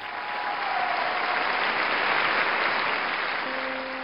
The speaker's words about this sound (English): The sound of applause. To a performer, it's what makes it all worthwhile. All the late nights, the struggling, it's all for that simple sound.